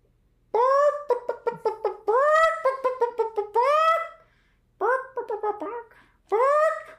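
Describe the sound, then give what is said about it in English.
A person vocally imitates a chicken, recreating a comedy bit in which the character Kimmy clucks like a chicken, letting out loud bursts of squawking clucks and rising bawks in three quick bouts separated by short pauses. “Kimmy starts clucking like a chicken, and then Ramona says boxcar”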